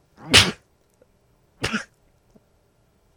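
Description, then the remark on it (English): Two loud, explosive sneezes, about a second apart, the first a bit longer and stronger than the second, with quiet between them. “Oh no, I gotta sneeze”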